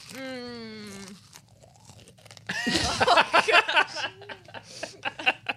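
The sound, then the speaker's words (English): Loud crunching of a handful of crisp Trader Joe's chips in mixed flavors, including pickle and vinegar, being bitten and chewed in a rapid irregular series, preceded by a brief high vocal sound and a low murmur. “I gave you guys a look that I probably shouldn't have given you as I was chewing the chips.”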